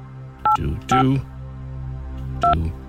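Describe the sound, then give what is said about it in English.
Three short telephone keypad tones, each a crisp two-pitched beep, come in an uneven sequence: two close together, then one after a pause, over a low steady line hum, as a presenter on Cork's 96 FM gets a phone line and dials a number. “Let's get a phone line first. There we go. Right, I have a number in front of me.”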